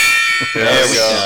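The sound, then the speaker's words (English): A struck gong rings out with a shimmering, sustained metallic tone that hangs through the whole moment, while a voice starts talking over the fading ring. “That was the most pathetic gong hit ever.”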